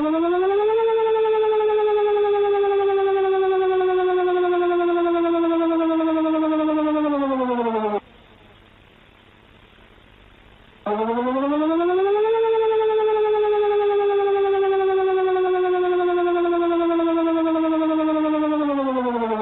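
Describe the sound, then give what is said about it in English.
A loud Danish civil defense warning siren sounds during the annual test of Denmark's nationwide siren warning system. It wails alone, its tone climbing and then slowly sinking, cutting off for a few seconds before rising again into a second long wail. “It was just the annual test of the Danish nationwide siren warning system.”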